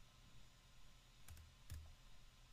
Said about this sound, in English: Which, sorry, everyone's listening to my loud keyboard now.